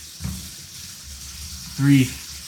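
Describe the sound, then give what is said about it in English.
Tap water runs steadily into a sink, filling it to heat a bottle of wheat malt extract syrup; an even rushing hiss throughout, with a brief low voice-like hum rising over it near the end. “So, I'm filling the sink with water to heat up this fucking wheat malt extract syrup because it'll make it easier to get it out of the plastic fucking bottle it's in.”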